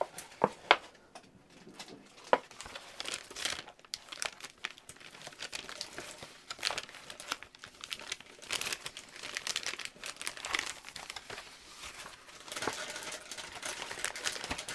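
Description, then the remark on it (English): Continuous crinkling and crumpling of paper, with irregular sharp crackles and rustles throughout and no talking. “All sorry right, last sorry time, for the crumpling paper again.”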